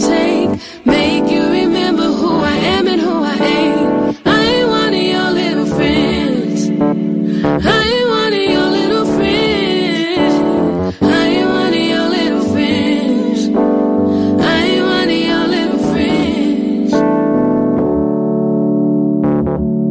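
A slow R&B jam plays loud and steady, a smooth sung vocal riding over warm sustained chords and a soft beat, before the final notes ring out and fade.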